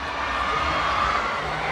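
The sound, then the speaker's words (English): A crowd of K-pop fans cheers and shouts in a steady, dense roar that holds at an even loudness for under two seconds, with no single voice standing out, hyping up someone dancing K-pop choreography. “And when someone is really good, the crowd hypes them up, which is what's happening now.”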